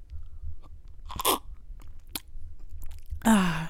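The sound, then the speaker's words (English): Wet mouth noises of someone sipping a thick Too Good strawberry banana smoothie bought at Target: a few short slurps and swallows, quiet between them, then a louder breathy exhale with a falling voiced tone at the end. “I'm drinking a Too Good smoothie.”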